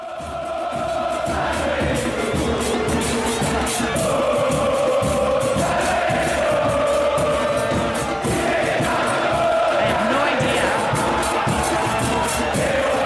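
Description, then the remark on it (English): A huge stadium crowd at a football (soccer) match chants in unison, a loud, continuous roar of massed voices carrying a rising and falling sung melody for the whole stretch. “And that had me going down a real rabbit hole this morning, Greg, just listening to all the different stadium chants that are out there.”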